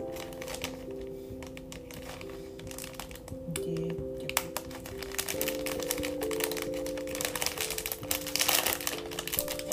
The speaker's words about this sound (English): And I'm trying to figure out how to open this package.